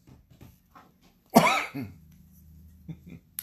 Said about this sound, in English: What's making me cough?